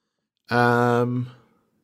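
A single loud car horn blast, held steady for just under a second at one buzzy, unchanging pitch, then cut off with a short fading tail and no voices.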